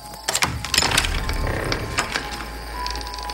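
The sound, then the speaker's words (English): A loud wooden door creak as a soot-stained door is pushed open, with a run of sharp ratcheting clicks and strained, tonal groans stretching over about three seconds. No one speaks. “Then Jack turned and stumbled to the soot-stained door, pushing it open with a loud creak.”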